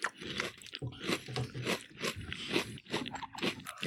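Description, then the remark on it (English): Steady crunching of sugar-coated corn and wheat toasted-square cereal with honey brown sugar flavor being chewed in milk, with wet, crackly bites repeating in an irregular rhythm for several seconds and no talking. “but these seem to have such a substantial sugar coating on the outside that, just like powdered toast, they stay crunchy even in milk.”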